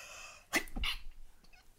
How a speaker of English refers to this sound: I've been sick for 4 or 5 days since Thanksgiving, and man, I was sneezing though 2 weeks ago, right? Before we were starting the shows. I don't know what the hell happens. I get all fired up, and all of a sudden I got to sneeze.